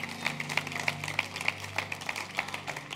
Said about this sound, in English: Give the Lord a hand clap if you learned something tonight. Yeah. Hallelujah.